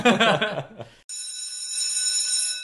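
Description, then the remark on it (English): After a brief moment of talking, a bright, sustained bell rings out to mark the session nearing its end, with a shimmering, high-pitched metallic tone that holds at an even loudness until the end. “And that is our bell, but that doesn't mean we're completely out of time.”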